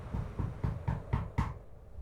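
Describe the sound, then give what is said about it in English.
Six quick, evenly spaced knocks on a door to get into a town, dull and low-pitched, rapping in a steady rhythm for about a second and a half before stopping. No voices are heard. “Let's go knock on that door and see if we can get in the town.”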